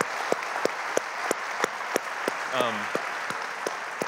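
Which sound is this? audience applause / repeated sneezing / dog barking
audience applause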